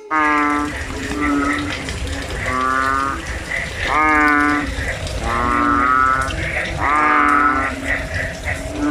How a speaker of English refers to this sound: Two frogs facing off in battle. County Rivers. They're fighting. Bullfrogs are fighting. You hear that? Are you sure this is not the sweet sounds of frog mating? Could be frogs mating.